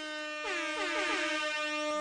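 signal or alarm, air horn blasts

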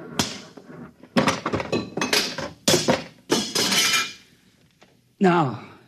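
sound effect, machine being smashed

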